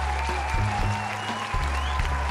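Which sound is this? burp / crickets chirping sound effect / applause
applause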